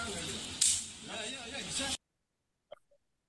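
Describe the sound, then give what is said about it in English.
A single sharp, loud slap to the face cracks out early amid a noisy background of voices in Hawaii, followed by sudden quiet and a couple of faint clicks. “That shit sound hit like a snap.”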